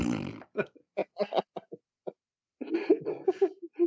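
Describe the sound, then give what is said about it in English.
A voice imitates a fart, mimicking Darth Maul's speeder as a poop-powered flying toilet chasing Anakin and Qui-Gon: a string of short sputtering bursts with brief pauses, then a longer, buzzing, rumbling blast. “Anakin, run! He's farting!”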